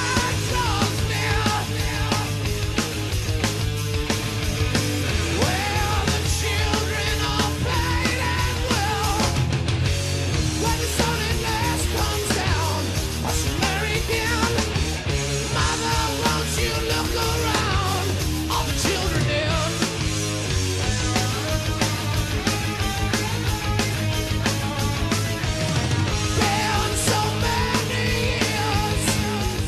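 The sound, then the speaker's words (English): A heavy metal song played from a record plays continuously at a steady, loud level, with dense distorted guitars, pounding drums and shouted vocals filling the whole half-minute without pause. “So moving on, let's play a fourth track.”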